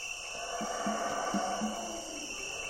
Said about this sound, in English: What the heck is that? Oh, those howler monkeys.